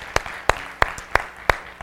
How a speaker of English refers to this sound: The next part, yeah, we can clap for that.